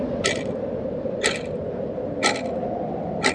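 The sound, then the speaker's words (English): A clock ticks loudly, four crisp metallic clicks spaced evenly about a second apart, over a steady low rumbling background noise, the ticking echoing across snow and ice at Stalingrad. “A loud ticking sound echoed across the snow and ice.”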